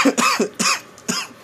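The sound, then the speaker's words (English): A rapid coughing fit after taking a hit while smoking: three harsh coughs in quick succession, each a raspy burst with breathy wheezing between them, loud and unaccompanied by speech. “When you hear someone go into a coughing fit.”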